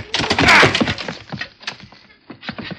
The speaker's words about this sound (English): Oh, here. Let me force this door. I can't. Help me, Major. Please, together.